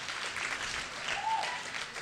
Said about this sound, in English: Good evening, everyone. That was amazing. I just want to give them another round of applause. That was absolutely awesome.